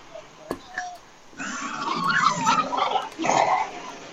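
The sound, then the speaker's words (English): A cat in a voodoo queen's lair growls in a low, rough, drawn-out rumble that swells and wavers for a few seconds, after a couple of faint clicks and a brief murmur. “Growling.”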